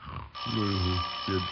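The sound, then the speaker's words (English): A doorbell rings in one long, steady buzzing tone that starts abruptly and holds to the end, with a voice briefly audible underneath it. “Oh, doorbell.”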